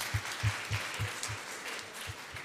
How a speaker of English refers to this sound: But no, Rock Nations and Pulse, yous all deserve such a big round of applause. So let's just give them that right now.